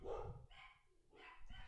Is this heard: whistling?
no